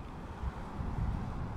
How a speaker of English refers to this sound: Jesus, now it just got windy as fuck, which I can't complain about because it's so hot, but that's going to be bad for the recording. Oh well, what can I do? Whatever, man, the weather's the weather.